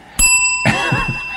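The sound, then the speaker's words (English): A cowbell is struck once, loud, and its bright metallic tone keeps ringing out while a rougher, lower sound joins in underneath. “I should have said, this does ring a cowbell.”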